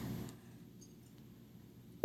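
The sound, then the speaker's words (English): A low, quiet hum gives way near the end to a loud, steady telephone ringback tone of an outgoing phone call, starting abruptly and cut off almost at once. “Let's see if it rings.”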